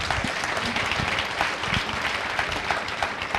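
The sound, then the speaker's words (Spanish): An audience claps for Norway as a participant from Norway is introduced, a dense crackle of many hands at an even, moderately loud level throughout, with no voices standing out. “Yeah, you guys can clap for Norway.”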